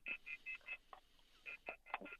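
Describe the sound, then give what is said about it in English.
A quick run of short telephone keypad tones, about nine electronic beeps with a brief pause midway, thin and slightly distorted as if coming down a phone line, while a caller has trouble with the phone connection. “Okay, she's having a little trouble with the phone connection there.”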